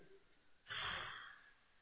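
A single sharp, gasping breath, a breathy rush that swells quickly and then trails off as air is let out, with no other sounds around it.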